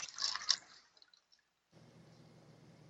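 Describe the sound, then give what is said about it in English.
Liquor splashes briefly into a small shot glass, followed by a few faint drips, a moment of quiet, then a low steady room hum. “nope, that's already full. I was about to pour more of a shot.”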